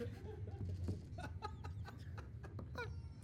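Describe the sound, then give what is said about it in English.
A string of strained, squeaky squawks from a rubber chicken toy being squeezed, several wheezy honks in an uneven rhythm, fairly loud over a busy background murmur. “That's what it sounds like. A dying chicken rubber toy.”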